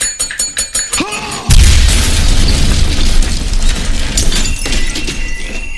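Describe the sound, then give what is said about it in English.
In a scene from Breaking Bad, Uncle Tito strikes a bell rapidly several times to set off a bomb, then a massive bomb explosion cuts it off, a deep roaring boom that keeps rumbling and crackling with debris for several seconds. “Uncle Tito bangs on that bell over and over and over again to set the bomb off, which is why if you listen to that episode, you hear a really nice bell all the way through.”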